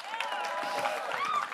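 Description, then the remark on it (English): A brief burst of audience applause, a steady wash of clapping mixed with cheering and high whoops from the crowd, fairly loud and even throughout, as people on the stage are introduced. “You know who they are, but still, as I introduce them, let's give them a round of applause.”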